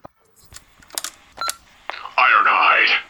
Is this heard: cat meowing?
no